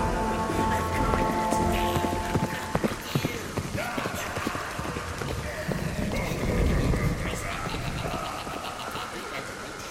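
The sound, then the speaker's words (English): Steady night rain pours down onto surfaces in a dense, continuous patter, with scattered sharper knocks and a faint voice-like murmur blending into the wash throughout. “Hours later, Zoran looked around at the night rain.”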